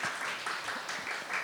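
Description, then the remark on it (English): A church audience at Beloved applauds newcomers steadily, many hands clapping together in a dense, continuous patter at a moderate level, with no distinct voices standing out. “Welcome to Beloved. Clap for them.”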